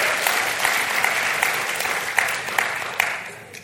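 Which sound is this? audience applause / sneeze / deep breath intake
audience applause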